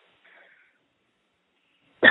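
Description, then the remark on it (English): A single sharp cough from a woman told to take deep breaths and cough during a prayer bursts out at the very end after nearly two seconds of near-silence, preceded only by a faint, brief murmur early on. “We're going to go ahead and continue, and I want you to take deep breaths and cough those things out.”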